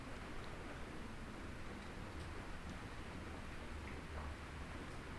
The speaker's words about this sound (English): Listen to that rain outside.